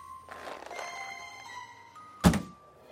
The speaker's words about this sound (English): After one last glance at her screen, no new messages or missed calls, Leah grabbed the car door's handle and got out of the car.